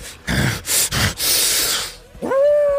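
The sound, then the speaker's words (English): Harsh, breathy snarls and hisses come in rough bursts, then give way to a loud wolf howl that rises and holds a clear, steady pitch as the sound ends. “Let's out this terrifying howl, and you begin to see him getting slightly bigger.”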